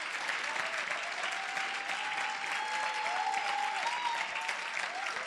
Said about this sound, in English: Clap your hands.